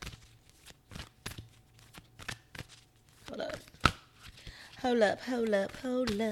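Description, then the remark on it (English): A deck of oracle cards being shuffled for a Full Moon in Pisces oracle reading, a run of quick, crisp riffling snaps and slaps for several seconds, followed by a person starting to talk while the shuffling continues faintly. “But while I wrap up the Full Moon Pisces, I'm going to be shuffling the cards for the Full Moon.”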